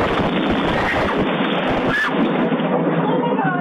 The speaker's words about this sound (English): A lightning bolt strikes a tree next door. The blast is intense. It felt a little bit as if it kind of pushed me back a little bit.